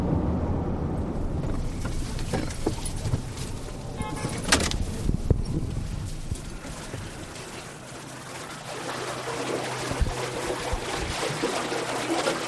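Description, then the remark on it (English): Irrigation water being delivered to farmers' fields in the Imperial Valley, California, flows in a steady, rushing wash of hiss and gurgle, with scattered splashes, and a low mechanical hum joins underneath in the second half. No one speaks. “The sound of the water is very relaxing.”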